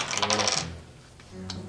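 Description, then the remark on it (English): Dice rattle and clatter across a hard tabletop during a tabletop role-playing game, landing a natural 20, in a quick, bright burst lasting about half a second, then settle into quiet with a faint low hum and one small tick afterward. “Oh, the dice do not like you tonight, sir.”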